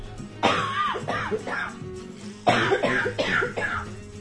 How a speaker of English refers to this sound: Oh, here comes one of those coughs.